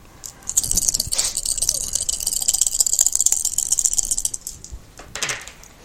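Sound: dice being rolled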